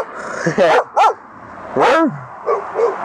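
Several sharp dog barks ring out at irregular intervals, loud, some with a slightly yelping, whiny pitch, over a steady background hiss.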